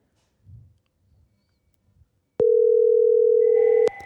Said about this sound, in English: Go get the phone. I'm not answering the phone. You go answer the phone.